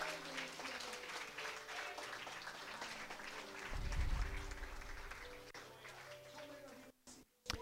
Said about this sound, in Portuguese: E se você crê, aplauda Ele e exalte a Ele.